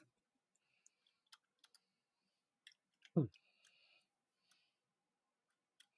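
Sparse, irregular clicks of typing on a computer keyboard, fairly quiet, with one short vocal sound breaking in midway; someone typing a message in chat.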